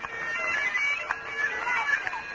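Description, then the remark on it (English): Bagpipes play beside a running race course around the 25-mile mark near the finish, a steady, reedy drone beneath a wavering high melody, loud and continuous throughout with no pauses, over a faint background hum. “The sound of the bagpipes let me know that the end was near.”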